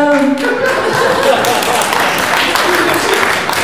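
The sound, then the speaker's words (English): An audience bursts into loud, sustained applause, a dense wash of many hands clapping that holds steady for several seconds, with a brief voice audible at the very start. “And the applause will kind of tell you something there, I think.”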